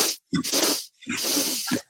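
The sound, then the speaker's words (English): During a breathing exercise, three quick, forceful sniffs are drawn in through the nose, fairly loud, with short gaps between them; the last inhalation is drawn out a little longer. No talking. “And with this breath, the breathing technique is inhaling 3 breaths through the nose and then exhaling out the mouth with sound.”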